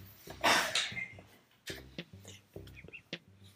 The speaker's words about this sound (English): I had to cough, y'all. And I was trying, I felt like I needed to hold in my cough because I felt like it would not be good quality if I coughed on the podcast. But I needed to let my cough go.